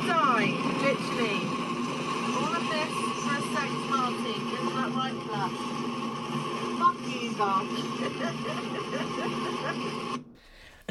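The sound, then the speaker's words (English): A car drives through heavy hurricane rain and flooded roads, a dense, steady roar of spray over a low engine drone, with faint muffled voices inside, ending abruptly near the close. “I actually have a recording of, well, I think you recorded it, of me driving.”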